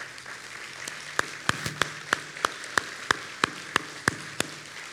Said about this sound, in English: that applause that we will again offer you in just a minute is just a way to acknowledge that thank you is never enough to offer to you for being the man that you've been to so many in this